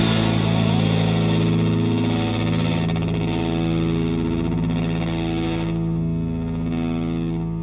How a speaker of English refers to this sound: with the sound of the airplanes at the end of that song.